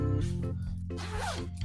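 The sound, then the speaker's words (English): A clothing zip is pulled in one quick continuous rasping stroke, over a steady low hum of background noise, with no talking. “Hang on, I just heard a zip.”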